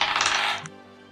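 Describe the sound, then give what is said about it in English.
Dice rolled on a table for a constitution saving throw in a tabletop role-playing game rattle and clatter in a quick burst of bright, clicking taps, ending with a sharp final click as they settle. No one speaks. “Everybody make me a constitution saving throw.”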